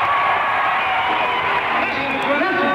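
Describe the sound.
A concert crowd demanding an encore after a show of well over two hours, cheering and shouting in a steady, dense roar of many overlapping voices, loud and unbroken throughout, with occasional higher whoops rising above the mass.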